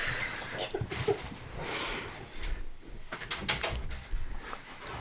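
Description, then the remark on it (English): A door is handled and pushed shut, with a few scraping, knocking bursts and rustling over several seconds, no one speaking. “Can you close our door? Can I close our door?”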